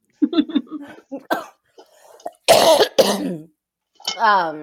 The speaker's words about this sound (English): I haven't been coughing, but apparently talking a lot will make me cough. But it's only that we're recording is why you're coughing. And if yes. we were just talking without recording, you wouldn't cough.